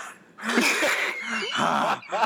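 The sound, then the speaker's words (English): Heavy, raspy breathing over a phone line, a few long ragged breaths with a slightly voiced, wheezy edge, followed by a short sharper gasp at the end. “provide a bit of your breathing”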